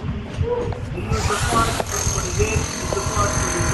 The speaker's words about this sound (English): You hear this drill? I got a nice hammer drill. Yeah, listen to that hammer drill.